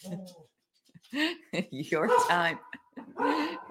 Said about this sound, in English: Your time to manage the barking dog in the background.